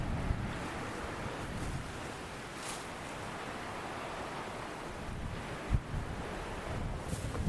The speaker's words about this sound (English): You can hear the sea in Church Bay below. Gentle are the waves. I'm the only person around. It's the lovely soothing sound of water just rolling. The waves just rolling onto the shore here.